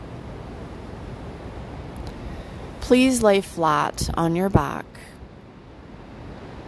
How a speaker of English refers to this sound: Today's sounds will be provided by a gentle breeze, the ocean, and occasional bird sounds in the background.